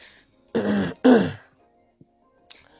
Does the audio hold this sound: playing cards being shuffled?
no